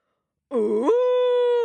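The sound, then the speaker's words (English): A voice imitates an angry white elephant's bellow from the royal stables at sunrise: a loud, wavering, quivering cry that settles into a long, steady, sustained tone, with silence before it begins. “But just as the sun rose the next day over the royal stables, shine, shine, shine, shine, there was a roaring and a bellowing even louder than before.”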